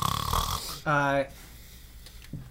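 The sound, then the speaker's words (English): A voice imitates a loud snore, one buzzing, throaty snort lasting under half a second, clear, following a brief burst of talking. “Yeah, I'm snoring real loud.”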